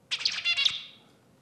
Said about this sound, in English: So the zebra finch learns, the male zebra finch learns to sing a nice mating song from its daddy. And this is what one such zebra finch sounds like.